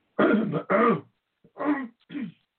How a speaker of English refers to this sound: Let me mute myself and clear my throat so I don't keep doing that. Excuse me a minute.